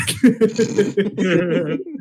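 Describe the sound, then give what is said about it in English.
A voice makes a run of quick, squeaky chirping bursts, then a longer warbling trill, imitating wild bird calls for about two seconds. “And then he was like making like these fucking crazy ass bird noises that I'd never heard of before in my life.”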